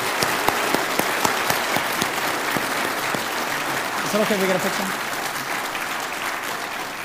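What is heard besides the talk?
audience applause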